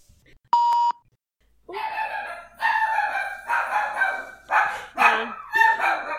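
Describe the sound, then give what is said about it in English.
A short electronic doorbell tone sounds as someone rings the doorbell, then Banjo, a female dog, launches into loud, repeated barking, about six sharp barks in an uneven rhythm with no one talking. “Someone rang my doorbell.”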